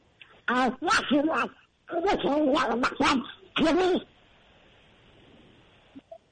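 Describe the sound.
A person does a Donald Duck voice impression, a raspy, quacking, garbled chatter in several bursts of strained nasal speech, followed by a couple of seconds of quiet.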